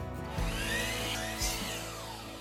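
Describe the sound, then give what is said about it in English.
A power saw whines loudly and steadily as it cuts through a wooden board for a wall being put up inside a barn. The motor's pitch dips briefly twice as the blade bites in. No voices. “Another board cut. That's probably way too loud.”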